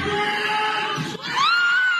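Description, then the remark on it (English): A loud, sustained roar of a crowd cheering at a high school basketball game in North Dakota after a player makes a half-court shot, dense and steady throughout, with a brief dip before surging again with higher-pitched screams and whistle-like tones. “And the crowd goes wild.”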